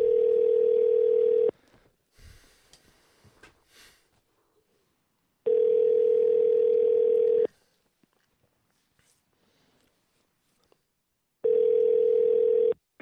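A phone call's ringback tone on a call placed to a hotel, steady electronic rings about two seconds long repeating three times with pauses between, loud, with faint handling noises in the gaps.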